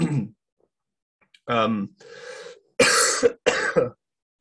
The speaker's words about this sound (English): My gosh, am I dying from this cough or what? I've been sick now for like 5 or 6 days and it's just not gotten any better.